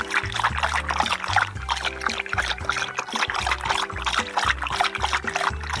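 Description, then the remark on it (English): Water pours steadily into a glass for several seconds, a continuous splashing trickle with shifting low resonant tones, fairly loud, with no talking. “Do you want a glass of water?”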